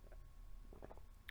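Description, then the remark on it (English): Quiet sipping and swallowing of water, a few soft wet gulps over low background noise, ending in a sudden loud bump as the cup is set down or knocks the mic. “Let me take a sip of water really quick.”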